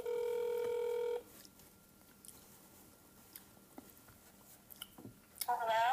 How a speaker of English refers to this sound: now we're calling our other sister, DG, on the phone